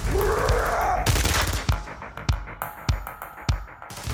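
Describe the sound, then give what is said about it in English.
A gunfire sound effect: a volley of sharp, booming shots fired in the distance at irregular intervals, each with a low rumbling tail, over a steady background din. No one speaks. “I could still hear gunfire in the distance.”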